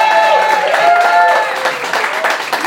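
An audience claps steadily for a few seconds, a dense patter of hand claps mixed with high whistles and cheering voices, loud throughout with no talk.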